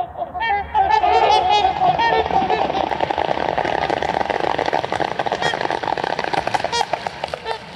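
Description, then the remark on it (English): A flock of trumpeter swans honk repeatedly in a loud, overlapping chorus while taking off from water into a winter sunset, their calls layered over a steady rushing splash of wings and feet. “And they're off, taking flight into the winter sunset.”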